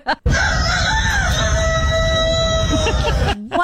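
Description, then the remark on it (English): A person imitates a rooster's crow in one loud, sustained, strained call lasting about three seconds, with a harsh, screamy edge. “The angry rooster.”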